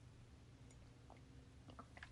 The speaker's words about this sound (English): Pausing for dramatic effect to sip my coffee